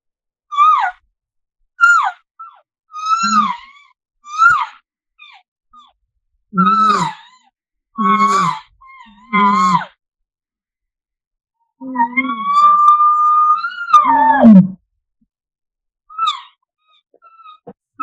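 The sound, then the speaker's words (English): Imitated elk calls made with mature cow sounds: a string of short, wavering, high-pitched estrus mews leading into an estrus buzz, then a sustained bull contact bugle that breaks into a falling, grunting whine and grunts, followed by a few brief calls. “I use my cows, mature cow sounds, no calf sounds with this, my mature cow sounds, estrus, that wavy estrus sound into my estrus buzz. And then I do a contact bugle into some grunts.”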